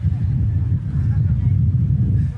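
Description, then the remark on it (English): Strong wind buffets a microphone at a SpaceX Starship event, producing a loud, steady low rumble with rough, fluttering gusts that barely let up across the whole stretch. “It's quite windy here.”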